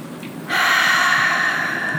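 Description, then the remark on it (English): A long, steady inhale through the nose starts after a brief pause and continues evenly as an airy rush of breath, with no talking. “And on this next inhale, breathing in joy, love, peace, and gratitude.”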